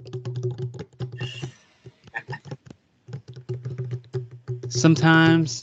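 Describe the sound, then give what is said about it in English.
Rapid clattering of keys on a computer keyboard, fast irregular clicks over a low steady hum, pausing briefly midway before resuming, with a loud voice-like burst near the end. “Sometimes I do like the gunny typing.”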